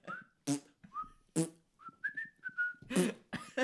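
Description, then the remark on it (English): Someone whistles a short, wavering tune, the thin notes broken up by several sharp, noisy bursts that sound like improvised percussion between phrases. “You'd be like, trying to go along with the whistle sound.”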